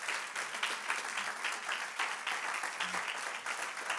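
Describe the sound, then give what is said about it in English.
An audience claps their hands unto the Lord in a steady, dense burst of applause, many overlapping claps forming a continuous crackling wash that holds at an even loudness throughout. “If you're ready to receive this word, come on, clap your hands one more time unto the Lord.”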